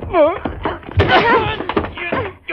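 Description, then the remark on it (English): A single dull thud of a person falling to the floor lands about a second in amid strained, wavering voices and sobbing sounds that continue around it. “You made me fall.”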